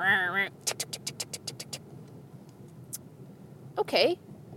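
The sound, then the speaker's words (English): A voice imitates a work truck engine starting: a quick run of about nine sputtering cranking pulses, a pause, then a short strained vocal rev, fairly loud. “And I do my last two houses, and I get into my work truck. And I go to start it, and I hear this.”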